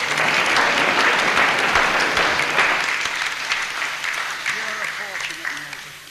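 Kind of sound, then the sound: crowd, audience applauding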